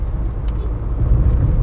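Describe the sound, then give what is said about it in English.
Steady low engine rumble from inside a moving car in Los Angeles traffic, with brief hissy bursts of passing traffic outside, like a vehicle creeping through busy city streets. “This guy in front of me just stopped and just went to the next lane without a blinker on, and yeah.”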